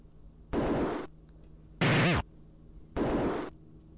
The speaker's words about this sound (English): This is a door opening.